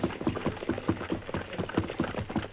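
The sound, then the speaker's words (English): Horse hooves clip-clop in a steady, even rhythm, moderately loud, as a big, rangy black horse with a white star on its forehead is ridden up the street to the rail, slowing to a stop, with no voices over them. “Coming up the street. A big, rangy black. White star in forehead.”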